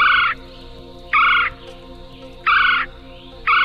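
A red-bellied woodpecker gives four loud, rolling churring calls, each a short burred note repeated at steady intervals of about a second, clear with a low background hum.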